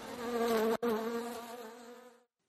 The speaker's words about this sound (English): Actually, he's permanently covered in bees.